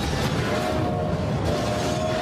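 sound effect, train sound effect

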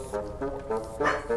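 animal, dog barking and whining

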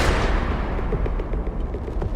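sound effect, gunshot

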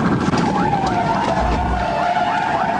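vehicle, police car siren

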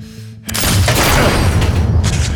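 sound effect, gunshots

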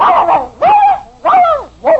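animal, dog barking

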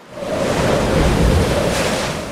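nature, ocean waves surf

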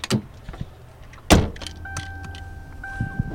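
vehicle, getting into a car

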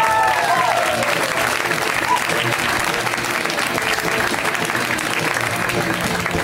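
crowd, audience applause

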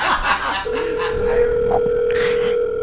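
signal or alarm, telephone call ringing

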